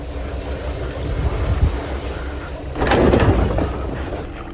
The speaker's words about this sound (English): So imagine you're sailing in a yacht off the coast of Spain. And as you gaze into the water, you see a pod of orca whales swim right up to your boat. But then you hear this. Yeah, my God. The orcas are ramming the ship.